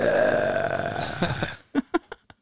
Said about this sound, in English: Yeah. That's only like a burp more than...